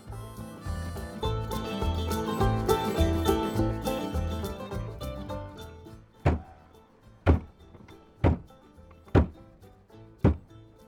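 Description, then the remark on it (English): A hand thuds on the side of a truck five times, dull and loud, roughly a second apart, as the truck drives past a herd of American bison on a ranch, after several seconds of steady rumbling, tonal background noise. “Tom is in his truck, thudding on its side with his hand while driving past a herd of American bison.”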